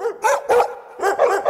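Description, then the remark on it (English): Several puppies bark and yip in quick, overlapping, high-pitched bursts, with a brief pause before another flurry of yaps. “But first, puppies!”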